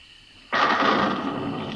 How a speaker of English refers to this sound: What's that? Thunder